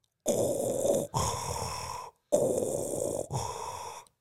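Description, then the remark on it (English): A person imitates raspy respirator breathing: two slow, hissing inhale-exhale cycles, fairly loud, with a short pause between them and no talking. “would you rather talk like Yoda or breathe like Darth Vader?”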